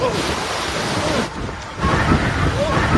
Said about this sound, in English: That's the grim warning today after monster waves, one after another, pounded the West Coast.